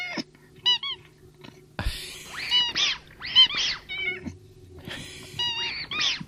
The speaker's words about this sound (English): Finally, a cat noise.